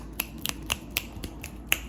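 About eight sharp finger snaps in quick, uneven succession, each a crisp bright click, with the loudest coming last. No one speaks.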